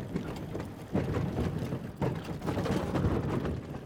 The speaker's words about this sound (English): So what we just heard there is Mike riding his bike, actually.